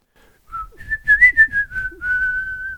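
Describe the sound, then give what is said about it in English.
A clear whistle sounds a short command signal telling Molly, a rented yak, to exit the building: a quick rising note, a brief warbling middle, then a long steady tone held to the end, over faint low background rumble. “You give her the command for exit building.”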